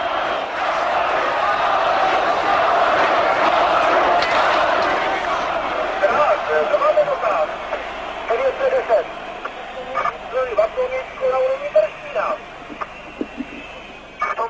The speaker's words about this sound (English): Loud and angry, thousands of voices rage against the police in this confrontation.